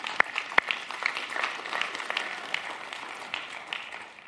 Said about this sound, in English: And that's a great place to actually clap because it's a good thing, right?